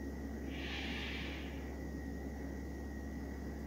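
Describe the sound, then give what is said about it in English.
A soft, airy inhale, a deep breath in during a guided meditation, rises and fades over about a second, followed by quiet steady background hiss with no talking. “Breathing in”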